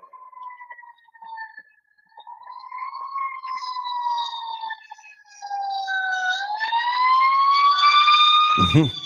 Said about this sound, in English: Hold on one second. There's an ambulance left to pass by. Okay.